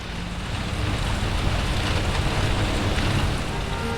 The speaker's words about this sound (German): stellten sich gegenüber der Kirche im Eingang einer Buchhandlung unter und sahen zu, wie der Regen auf ihre abgestellten Drahtesel klatschte.